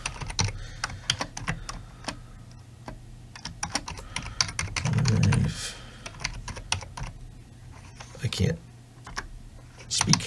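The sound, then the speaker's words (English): Rapid, irregular clicks of typing on a computer keyboard run the full length, with a steady low hum beneath and a brief louder rumble around the middle. “Type.”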